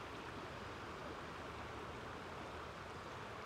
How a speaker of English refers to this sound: Imagine you're like the water flowing around the rocks of this river. water sinks to the lowest point and it moves around obstacles. It's soft, it's malleable. Let your body be soft like the water here.